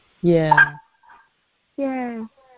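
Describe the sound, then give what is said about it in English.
A female dog gives two drawn-out, howling barks, each about half a second long and falling in pitch, separated by a brief pause. “This is a dog.”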